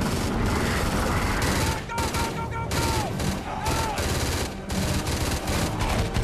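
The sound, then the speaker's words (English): Heavy, sustained automatic gunfire from John's big gun, fired at the Wraith, a dense barrage of rapid loud bursts with booming low end, continuing steadily with brief dips, and some faint voices underneath. “John likes his big gun.”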